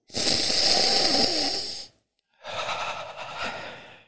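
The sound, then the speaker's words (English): Two long, loud, breathy sniffs drawn in through the nose at a bottle sealed with white wax, each lasting well over a second, separated by a brief pause, with no talking. “A supercut of all sniffs.”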